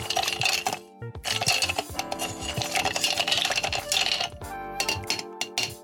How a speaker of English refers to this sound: And then you just get a spoon and a bar spoon, which is a long one, and stir it.